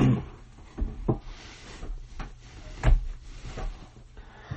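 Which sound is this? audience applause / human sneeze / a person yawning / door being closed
door being closed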